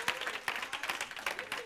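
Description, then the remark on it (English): An audience applauds for a girl who just turned 16, many hands clapping in a dense, steady patter that holds at an even moderate loudness throughout, with no voices standing out above the clapping. “Y'all should clap for her”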